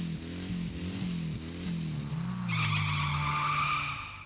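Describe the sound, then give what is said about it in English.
A car engine revs loudly, then tires break into a sustained, high-pitched screech of burning rubber over the roaring motor, with no voices. “Watch out. Time to burn rubber”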